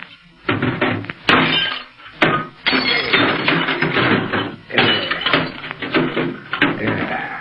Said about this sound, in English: To make sure nobody else hears, I'm going to wreck this short wave set.